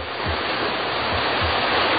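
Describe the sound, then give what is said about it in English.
A loud, steady rush of spraying water roars without a break as fire pumpers' coupled hoses are opened at full blast to flood a target from all angles, a dense hiss of surging water with no voices. “All the hoses coupled up. We'll flood that thing with water from all angles.”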